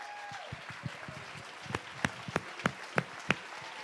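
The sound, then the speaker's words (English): A church audience stands and claps as a praise offering to the Lord during a sermon, the scattered claps at first growing into sharper, steadier, roughly rhythmic hand claps, with a faint tonal hum and murmur underneath. “Stand to your feet and give the Lord a clap offering of praise.”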